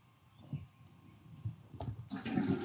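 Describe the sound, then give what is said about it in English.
A toilet flush: a few low, muffled thuds and gurgles, then a sudden loud rush of swirling water for the final half second. No one speaks. “Flush it or flip it.”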